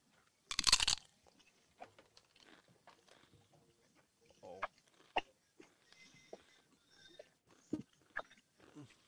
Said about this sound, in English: Everyone can just hear me chew this thing. You're going to be chewing it forever. I couldn't even chew the whole thing.